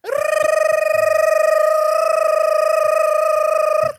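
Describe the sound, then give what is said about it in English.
A loud, steady electronic alarm, the 'gibberish' alarm, rings for nearly four seconds: a single buzzing mid-pitched tone with a rapid trill running through it, then it cuts off abruptly. No voices. “That is the gibberish alarm.”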